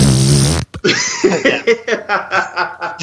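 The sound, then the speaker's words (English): A loud, buzzing raspberry blown with the lips imitates a fart for about half a second, followed by a string of breathy snickers and chuckling laughter. “So in the middle of like these super serious conversations, her dog would just be like, "Oh God, dog farts are the worst."”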